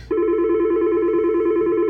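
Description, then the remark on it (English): A telephone rings with a loud, steady electronic tone that starts abruptly and holds unbroken for about two seconds, with no one talking. “Why are people calling right now? It's ridiculous.”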